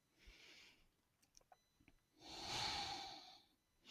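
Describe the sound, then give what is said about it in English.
Slow breathing from a person on their knees sitting back onto their feet: a soft airy breath, a short pause with faint clicks, then a longer, louder exhale, with another breath starting at the end. No one speaks. “Sitting back down on my feet as her voice fades out, taking one last breath.”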